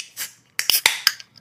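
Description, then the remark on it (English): A beer can with a black top cracks open before a pour of a black coffee beer: a short hiss, then a run of sharp metallic clicks and pops, bright and crisp, with no voices. “Yeah, let's go ahead and give it a crack and a pour, shall we?”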